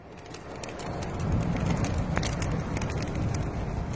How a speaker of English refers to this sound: The crackle of a fire can be such a soothing sound. But there are exceptions. This fire, for instance, is not meant so much to calm as to incite anyone who might see it. We're here in a Facebook video from 2018.